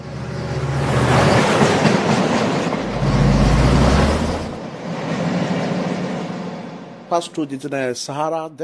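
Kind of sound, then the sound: vehicle, train running on rails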